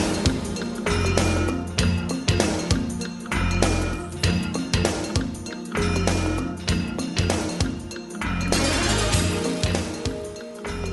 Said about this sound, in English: More good percussion. This just sounds like somebody's hitting metal with a hammer. Kind of like that. Some nice rough percussion.